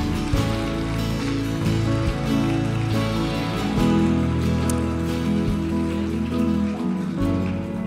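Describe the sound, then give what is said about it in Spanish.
The Presencia Viva audience applauds loudly for those serving in PB Kids, a dense, steady wash of many hands clapping that holds at full strength for several seconds, with sustained low musical tones underneath. “Así que queremos en este día darles un aplauso fuerte. Toda Presencia Viva les aplaude.”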